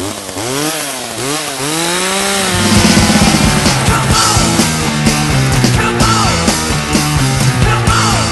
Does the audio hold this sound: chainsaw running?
yes